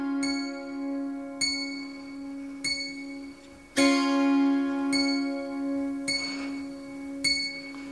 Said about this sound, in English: Long clear bell.